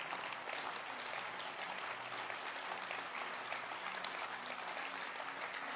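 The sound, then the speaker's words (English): An audience in church claps hands in a steady, dense wash of applause that holds an even level throughout, with a faint murmur of voices beneath. “And it's a good place to clap your hands.”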